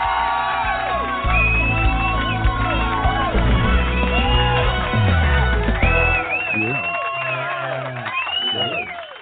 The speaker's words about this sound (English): They have to cheer and shout and scream to stay warm. I think that's what it is.